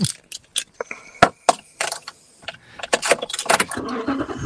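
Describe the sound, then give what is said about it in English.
Keys jingle and clink in short bursts, then a pickup truck engine is started, turning over and settling into a steady low rumble beneath continued rattling. “It connected to my truck, I think, when I started it.”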